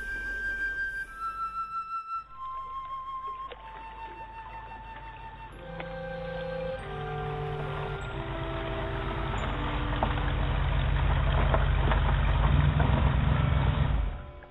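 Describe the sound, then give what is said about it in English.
A car engine rumbles steadily as it drives down to Stingray Point in Deltaville, its low drone swelling louder toward the end, while sustained musical tones step downward over it. No one speaks. “I jumped in my car and drove down to Stingray Point.”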